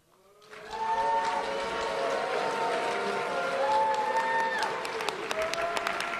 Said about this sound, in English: And he gets booed.